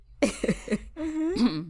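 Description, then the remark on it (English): Someone clears their throat: three short, gruff voiced bursts in quick succession, followed by a longer, sustained humming rasp that rises slightly in pitch. No talking. “sorry for clearing my throat?”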